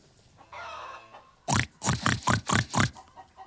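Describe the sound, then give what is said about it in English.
A voice imitating a pig: a brief nasal whine, then a quick run of about six loud, rhythmic snorting oinks, close up with no other sounds around them. “I'm a chicken. Just doing my best impression of a pig, and I think it might be Baby Yoda.”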